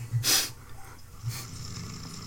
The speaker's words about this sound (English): Snoring. You're snoring. You sure it was me?